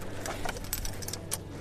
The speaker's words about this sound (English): So the the annoying thing about this car at the moment is the keys. The lock unlocks, but this thing in here gets caught, and I can't open the door. So I always have to unlock the car and then use this key to open the front of my car.